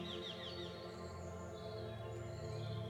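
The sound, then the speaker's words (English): Soft, high bird chirps and trills flutter all around over a steady bed of sustained, gentle tones, with a few quick calls early on and no talking. “Birdsong emanates all around, and the scent of flowers lifts your spirit.”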